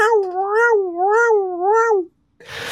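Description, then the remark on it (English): A loud cat meow drawn out into a long wail, its pitch rising and falling three times like a siren before cutting off, followed by a short burst of noise. “the meowy cat that you hear”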